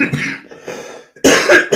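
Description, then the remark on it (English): A person coughs several times, starting with a few softer, raspy hacks and ending in a louder, harsher burst of deep coughs. “Almost made it through today without coughing and hacking up a lung.”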